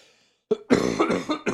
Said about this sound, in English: Sorry, I had to cough.